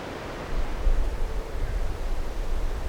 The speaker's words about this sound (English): What we're listening to is the sound of the wind through the birch, alder, oak and ash trees of an old alluvial woodland on the shores of the Garavogue River in County Sligo.